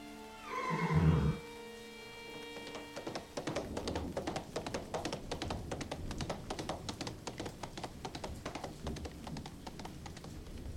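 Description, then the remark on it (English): A horse gives a loud, shrill whinny, then rapid hoofbeats clatter in a steady galloping rhythm for several seconds as Heathcliff rides off on Master Hindley's best horse. No one speaks. “Heathcliff's taken Master Hindley's best horse and he's gone.”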